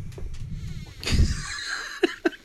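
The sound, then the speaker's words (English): A door creaks open with a drawn-out, high, wavering squeal over a low rumble, followed by two short sharp taps. “I don't know if you guys can hear the door. It's like, eee!”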